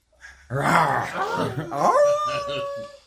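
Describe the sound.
A person imitates a wolf, letting out a loud, close howl that swoops up in pitch, then holds a long wavering note before fading, after a short breathy sound at the start.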